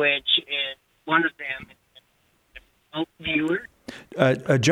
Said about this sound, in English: I'm so sorry, but you're breaking up a little bit. Just get right up to the phone and we'll give it a try.